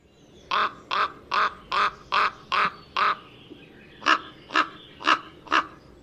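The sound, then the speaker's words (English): A raven gives deep, harsh croaking cronk calls, seven in an even rhythm, then a brief pause and four more, loud with no other sounds. “The raven's call is a very deep croaking cronk, cronk, cronk, which once heard and identified will be easily remembered.”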